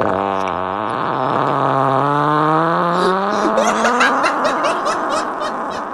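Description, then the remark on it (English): A loud, drawn-out fart with a buzzy tone that slowly rises in pitch, then breaks into rapid sputtering pulses near the end, with nothing else around it. “Just because that was an epic fart.”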